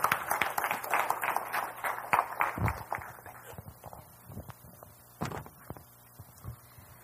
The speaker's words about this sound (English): Can we give her a round of applause as she comes to share with us?